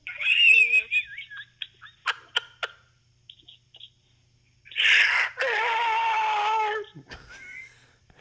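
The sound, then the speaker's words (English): A voice imitates a Star Destroyer scream: shrill warbling whistles and sharp clicking bursts, then a loud, sustained, rasping screech that slides downward in pitch before cutting off. “Could you close with your standard, you know, Star Destroyer scream for us all, please?”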